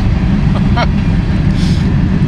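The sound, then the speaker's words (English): A train rumbles by, loud, a dense, steady low roar filling the whole stretch with a brief higher screech and hiss riding on top. “It will be very apparent that there's a train going by.”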